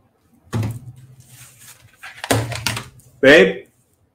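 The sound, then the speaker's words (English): A dog barks a few times, short muffled yelps spread out over a few seconds, ending with one louder, sharper bark. “Why is my dog barking?”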